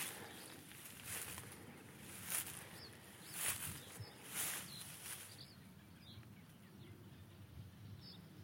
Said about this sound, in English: Faint songs of reed buntings. Reed buntings and reed warblers.